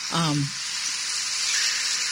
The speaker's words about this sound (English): And in the last segment, we were talking about bee lawns, and I actually did find, I made a little recording of the bees I could hear in my yard.